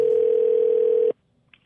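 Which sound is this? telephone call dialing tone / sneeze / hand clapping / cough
telephone call dialing tone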